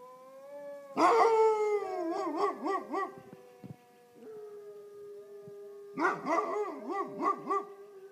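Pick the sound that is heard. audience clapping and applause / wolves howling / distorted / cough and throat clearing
wolves howling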